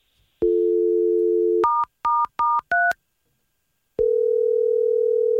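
A steady telephone dial tone hums, then cuts to a quick run of four two-pitch keypad beeps as someone dials to call a man back, followed by a pause and a new steady tone. No one speaks.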